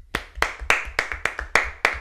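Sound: audience clapping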